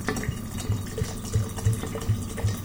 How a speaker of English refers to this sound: Right then, Mum, we've got a fair few sloes in there. So let's undo the gin and pour it in. Fill it up then.